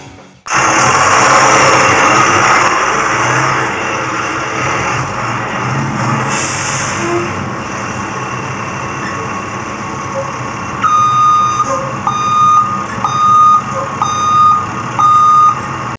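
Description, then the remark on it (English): A new bus's engine rumbles steadily, then a loud, evenly spaced series of high reversing beeps starts up over the idling motor near the end as the bus backs up. “Figured we would back the bus up on Fridays as we head in the weekend”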